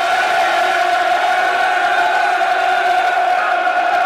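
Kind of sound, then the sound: crowd, football stadium crowd cheering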